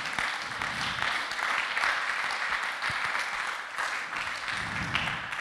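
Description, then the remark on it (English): A crowd claps steadily, a dense wash of many hands applauding with no pauses, sustained at a fairly even loudness throughout. “Come on, let's clap for that.”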